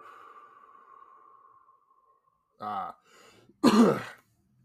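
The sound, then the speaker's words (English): A long exhale through the mouth trails off and fades, followed by a short throaty grunt and then one sharp little cough to finish. “Sometimes a little cough at the end can help expel some of the extra demons that infest your soul.”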